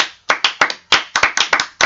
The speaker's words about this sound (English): Didn't we already clap for him? But if you can hear, we've got more than, we've got a couple of extra claps. Oh, okay. Yeah, we do. We've got a few extra bodies in the building. We got a couple of extra claps.